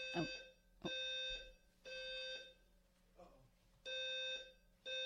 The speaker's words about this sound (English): We got some noise here. And it didn't stop. So was it a fire alarm?